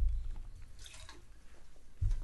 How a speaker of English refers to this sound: Make sure you get a good rinse on your glass. Get all those IBUs out of there.